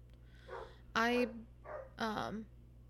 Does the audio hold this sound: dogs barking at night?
yes